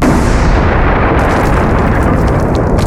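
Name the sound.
deafening explosion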